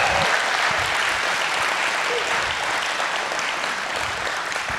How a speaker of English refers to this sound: So if you love Jesus, do me a favor, just clap your hands as loud as you can. Give him honor.